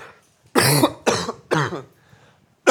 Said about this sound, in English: This is the old way to cough. When I was younger, here's how you coughed.